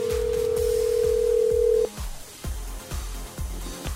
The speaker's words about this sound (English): All right, let's make a phone call.